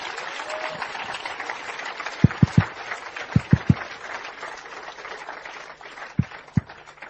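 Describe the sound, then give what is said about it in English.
A crowd, told to stand up on their feet, claps steadily for Jesus, a dense crackling wash of many hands that holds at an even level throughout, punctuated by a few deep, booming thumps. “Stand up on your feet. Clap for Jesus.”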